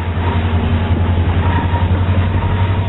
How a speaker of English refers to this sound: Then climb aboard an EMD SD-60 freight heading east over the mighty Sierra Nevada.